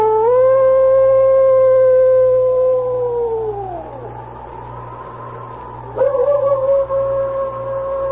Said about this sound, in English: His nose sniffed the air as the smell of fresh blood drifted to him. He was lean and hungry, and he followed the scent until he came to the trail of blood in the snow. It was then that he threw back his head, and a long howl broke the stillness.